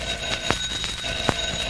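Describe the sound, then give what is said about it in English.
A telephone ring, made by Genie the magic record turning into a telephone, with a steady, bright metallic bell tone, punctuated by a few sharp clicking strikes throughout, sounding alone and at moderate loudness. “Alakazing, I'm a telephone.”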